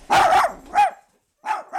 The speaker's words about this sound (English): and their assortment of excitable dogs. And this is Coco.